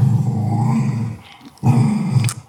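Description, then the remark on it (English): A female dog lying down growls low and rumbling, fairly loud, as other dogs try to take her toy, in two sustained stretches separated by a short pause, ending with a brief higher snarl-like sound. “So she's laying there growling like a bear”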